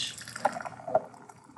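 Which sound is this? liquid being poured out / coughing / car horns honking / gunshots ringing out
liquid being poured out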